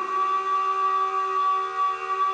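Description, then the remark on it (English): A steady alarm siren blares without a break, a sustained mid-pitched electronic tone with bright harmonics above it, holding even loudness throughout with no voices. “Sound the alarm.”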